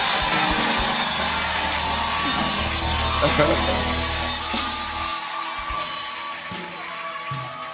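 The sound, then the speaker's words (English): A church service audience screams and cheers in a dense, sustained roar of overlapping voices with whoops and yells, steady for several seconds over a low hum that drops out partway through. “Somebody scream.”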